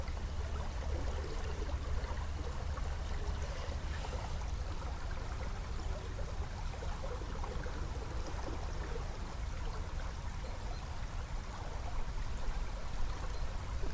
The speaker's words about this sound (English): And I think it's because when I'm here, I need to be present and witnessing what's happening, because there is so much happening when you're at the river.